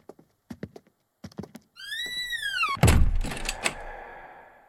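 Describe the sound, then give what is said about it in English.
A stuck door is pushed and thumped: a few sharp taps, then a long rising-and-falling creak, ending in a heavy thud and a rattling scrape, fairly loud with no talking. “The rest of the doors stay open. Why not this one? The floor isn't that uneven.”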